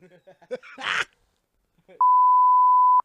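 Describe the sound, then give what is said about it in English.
A voice talks briefly, then a steady, loud pure beep tone cuts in and holds for about a second, like a censor bleep covering speech. “So, we'll beep that too.”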